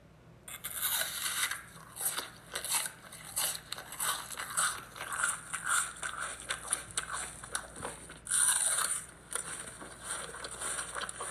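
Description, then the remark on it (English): Someone chewing something crunchy, with steady, irregular crackly bites and crunches running the whole time and no one speaking. “You were right with the chewing part.”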